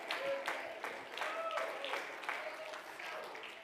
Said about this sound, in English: Oh, clap your hands and praise him tonight.